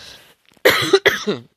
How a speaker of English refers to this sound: Excuse me if I cough. I'm actually still recovering from COVID